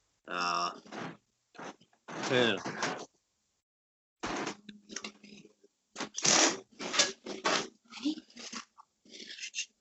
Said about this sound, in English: It's gonna load the washing machine.